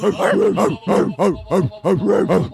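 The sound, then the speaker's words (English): A person imitates a German Shepherd barking, delivering about seven deep, gruff barks in a quick, steady rhythm, loud, with no other talking. “German Shepherd.”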